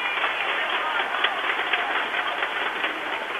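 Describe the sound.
A crowd cheers and applauds in a steady, dense roar of voices and clapping, with a few sharper claps poking through, holding the same loudness throughout.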